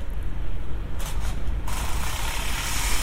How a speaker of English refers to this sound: Bit of drilling, very nice.